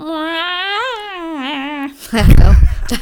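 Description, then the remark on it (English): A voice imitates the noise from a show's title scene, a cat-like long, wavering, high-pitched mewling whine for about two seconds, then breaks off into a loud, rough burst of laughter-like noise. “No, I just have your cat noise in my head now.”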